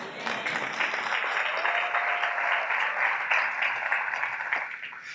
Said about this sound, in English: I noticed only the Ethiopians clapped.